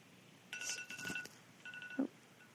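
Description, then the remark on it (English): An electronic alarm sounds in two short bursts of steady, high, ringing tones, the second ending in a quick downward pitch slide. It is moderately loud, with no voices present. “My alarm went off.”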